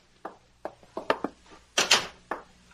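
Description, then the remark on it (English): A door is opened and shut, with a series of sharp clunks and latch rattles followed by a louder, scraping burst and a final knock. No one speaks. “Open the door.”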